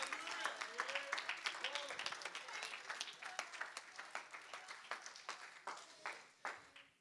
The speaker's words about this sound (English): Come on, if you're thankful it was the blood that reached you one day, somebody ought to clap your hands right now and give God praise.